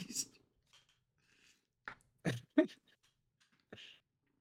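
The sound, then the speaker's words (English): Soft, irregular wet crunches and clicks of a dog, Pogue, chewing on something small that looks like a hair tie, a handful of brief bursts separated by quiet pauses, with no talking. “Just literally just what are you chewing on? That's not yours. That's not a hair tie, you dimwit.”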